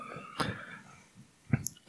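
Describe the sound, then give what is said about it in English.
A short, guttural burp erupts, followed by a couple of brief sharp bursts of noise, with no talking. “That's Belch Fest right there.”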